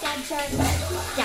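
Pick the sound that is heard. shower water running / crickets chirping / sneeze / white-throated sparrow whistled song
shower water running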